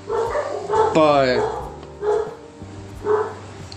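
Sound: dogs barking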